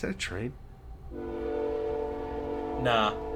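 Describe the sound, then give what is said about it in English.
A loud semi truck air horn blares on a crowded highway in one long, steady blast lasting a couple of seconds, with brief bits of someone talking just before it starts and again near the end. “No. That was my mistake. Semi.”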